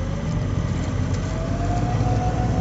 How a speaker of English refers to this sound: We started our engines